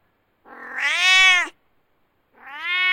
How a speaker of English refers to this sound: There are cats on the mountain, and many are quite friendly, wanting your affection and such.